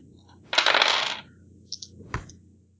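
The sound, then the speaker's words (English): A small number of dice, rolled by a game player casting a spell at force 6, rattle and tumble across a hard surface in a fairly loud clatter lasting about half a second, then a few small clicks and one final sharp tap as they settle. “Alright, I'm going to cast this at force 6 because, well, I have a very small number of dice in the first place, so.”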